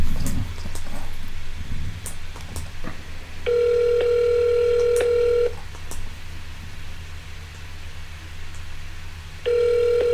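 A phone's ringback tone on a call to a hotel in Ukraine sounds twice over a low background hum: one long steady electronic ring lasting about two seconds, then a pause, then the next ring beginning just as the sound cuts off.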